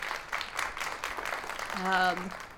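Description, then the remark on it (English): Soft, scattered clapping from a small group runs throughout, a light patter of quick claps, with a brief voiced sound rising over it near the end. “And there's a soft applause for that”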